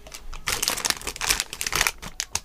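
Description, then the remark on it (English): Crinkly plastic packaging rustles and crackles as a Pascall lolly party pack is pulled open, a dense run of sharp, bright crackles in uneven bursts lasting a couple of seconds, with no talking. “What do we have in the party pack?”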